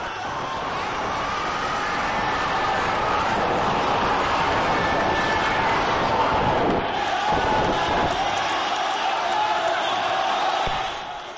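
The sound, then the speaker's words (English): A huge crowd roars and cheers continuously at the announcement that President Hosni Mubarak has stepped down, early 2011, during the Arab Spring; a dense wall of shouting voices that swells and stays loud for the whole stretch before easing slightly at the very end. “Listen to that crowd.”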